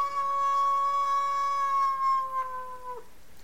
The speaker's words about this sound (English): Screams in the distance. Howling.